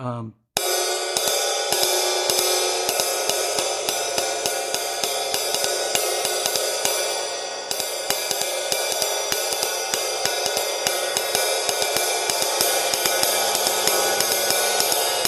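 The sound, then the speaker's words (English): A 1976 2002-model 20-inch flat ride cymbal played in a steady, continuous pattern, each crisp stick hit riding over a bright, sustained metallic wash that stays loud and even throughout. “This is a 2002 20-inch flat ride.”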